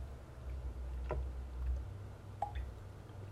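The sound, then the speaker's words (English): Someone quietly sips water, with a few soft gulps and wet mouth clicks spaced a second or so apart over a low, steady background hum. No one speaks. “I need water.”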